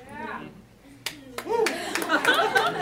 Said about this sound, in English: That's a weird number of people clapping for that. Some from Chicago.